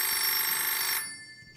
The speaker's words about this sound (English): You gonna get that? Dude, just get it. We don't actually answer the phone at the frat, so. Dude, please, just get it, man. No, let the machine get it. It's just cool. Rings nonstop, man.